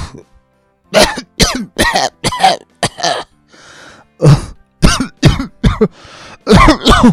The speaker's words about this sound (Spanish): con tos continua.